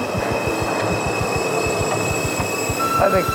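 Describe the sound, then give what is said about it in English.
A train rolls into a station, its wheels clacking in a steady rapid rhythm over the rails, with a rising metallic squeal of brakes near the end. No one speaks. “There's another train coming, and like even the thought of getting on it, my legs are feeling a little weak.”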